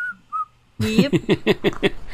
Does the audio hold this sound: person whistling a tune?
yes